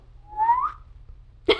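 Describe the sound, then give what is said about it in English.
A single rising whistle drawn in on an inhaled breath, breathy, sliding upward in pitch for about half a second, followed by a short sharp sound. “Two, an inhaling whistle.”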